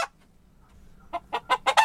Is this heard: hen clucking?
yes